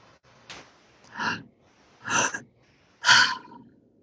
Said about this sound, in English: And just gently releasing that and then coming back to the active breath just for a few more seconds.